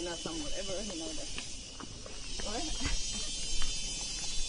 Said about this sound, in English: That is not the whine of some piece of machinery, though. Those are the cicadas. Yep, those are cicadas.